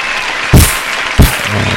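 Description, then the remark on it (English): Brief applause with a steady wash of hissy clapping noise and two louder, sharp bursts standing out about half a second apart, no voices. “Before we go, round of applause”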